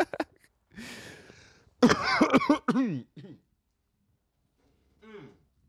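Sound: coughing and throat clearing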